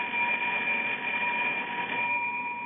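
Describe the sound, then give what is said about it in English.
An elevator's emergency bell, rung by pressing the button by someone stuck inside, rings nonstop in a single sustained, steady electric tone with a shrill, buzzing edge, holding at even loudness throughout with no pauses and no voices. “I've been ringing this bell for the last hour, and nothing happens.”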